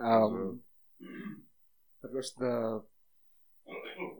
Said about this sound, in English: It's the wrong time to clear your throat when we're talking about snorting cocaine.